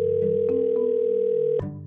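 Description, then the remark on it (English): A phone line ringing on an outgoing call: a single steady electronic tone that holds for over a second and then cuts off abruptly, with low background hum and no one talking. “So I made one last phone call.”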